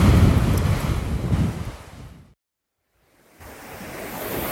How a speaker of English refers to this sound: So if you could just listen to the ocean with me for a second, and then I'm gonna start my episodes.